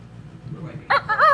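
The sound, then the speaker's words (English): A short, loud rooster crow bursts in after a quiet, murmuring lead-in, its shrill, strained call rising sharply and cutting off abruptly. “You can say cock referring to a rooster, though.”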